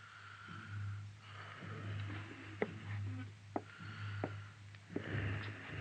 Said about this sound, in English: A nurse sat silently beside the bed. The only sound in the room was the hoarse, slow breathing of the wounded man.